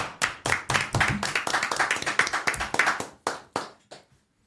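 A small group of people clapping in a brisk, uneven burst of sharp hand claps that overlap for about four seconds, then thin out to a few last claps and stop.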